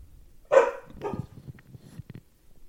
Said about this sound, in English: What's going on with your dog, Mike? You better get this beast under control.